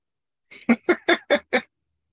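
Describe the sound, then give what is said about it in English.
A goose honks in a quick series of about six harsh, nasal calls as it flies away, evenly spaced and fairly loud, with no talking over them. “Good old goose was flying away.”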